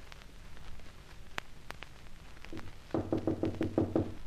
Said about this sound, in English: As soon as the lift commences to rise, you knock on Boyd's door, a sort of urgent knock.